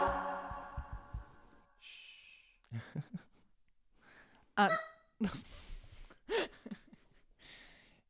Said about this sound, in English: He wants to be on the mic. He does. He gets to be on the mic almost every single time. I get at least one bark in. Mm-hmm. Right, Watson?